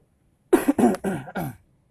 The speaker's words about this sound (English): Oh, you have to clear my throat.